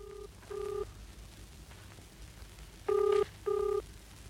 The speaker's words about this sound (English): That's my telephone on the table in my hall.